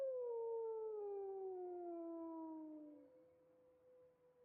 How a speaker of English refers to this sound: It's close. Not miles close. Wolf howls are incredibly hard to pinpoint due to the natural acoustics that they rely on.